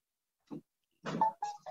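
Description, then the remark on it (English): A short electronic power-on jingle from a WeWalk smart cane, played when it is switched on with the one button on its back: a soft blip, then a buzzy burst and a few quick rising chime-like tones, loud and alone with no talking. “You hear a little ditty play and it'll start to vibrate.”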